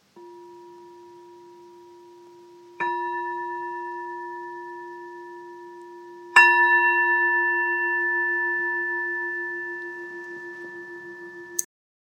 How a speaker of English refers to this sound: And I'm going to ring the bell, and then you can just continue with your practice.